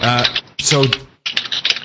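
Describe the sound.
A voice is heard briefly, then a short burst of rapid clicking from someone typing a Twitter post on a computer keyboard, announcing that a stream has restarted; the keystrokes are quick and uneven.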